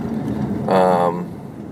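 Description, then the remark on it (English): A steady low rumble of road noise fills a car cabin while driving to or from work, with a brief voiced sound rising over it midway before the hum carries on alone. “I'm in the car. I'm on my way to work usually, or back from work, or trying to think, like, any time where I'm out in my car, pretty much I try to do the podcast.”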